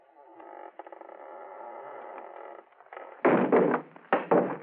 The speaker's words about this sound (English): Let's see if it's unlocked. Yeah, it is unlocked. No light in the room. Now listen. I'm going to shove the door open. Shine my light in.